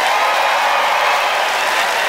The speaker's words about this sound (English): All right, it's time to vote by applause. Who thought that Katie Ellen's pro-planter platitudes helped you see the forest and the trees? Katie Ellen Humphries.